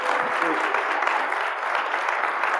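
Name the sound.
audience round of applause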